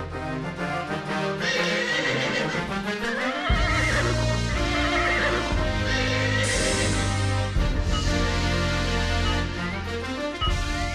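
An Arabian horse whinnies loudly with a wavering, high-pitched call, set against a dense, continuous bed of loud music with deep sustained bass.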